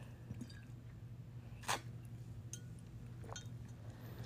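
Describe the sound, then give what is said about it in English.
Someone sips a drink from a glass: one sharp clink of glass, then a few faint, wet sipping sounds over a steady low hum, with no talking. “Let me sip.”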